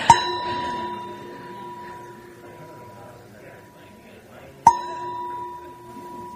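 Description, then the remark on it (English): A small bell is struck twice, about four and a half seconds apart, each strike ringing out clearly and slowly fading, with a soft murmur of room noise underneath. “I need a bigger bell.”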